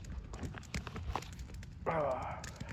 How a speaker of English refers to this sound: The fire's straight crackling. There's some, like, forest noises going on in the background. That shit's a vibe.